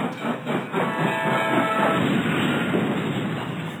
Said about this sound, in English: Train wreck.